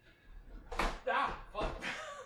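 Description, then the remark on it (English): A kitchen drawer without a stopper yanked open and banging hard against its end, with a few loud clattering knocks in quick succession over about a second and a half. “One of my drawers does not have a stopper, so it will just go.”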